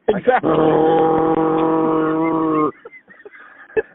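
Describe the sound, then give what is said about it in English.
Someone imitates a motorcycle engine with a sustained, buzzing vocal drone lasting a couple of seconds, loud, followed by a few soft, brief vocal sounds. “The least he could do is to make a sound like a motorcycle as he's going down the road.”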